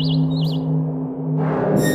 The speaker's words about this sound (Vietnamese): Hưng quay ra cửa sổ lắng nghe bên ngoài tiếng chim ca ríu rít